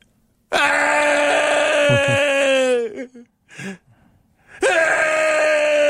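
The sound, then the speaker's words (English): A 28-year-old man, off camera in a video, lets out two long, loud, strained screams in the background, the first wavering and breaking off into short gasping breaths before the second begins. “There's a 28-year-old man screaming in the background.”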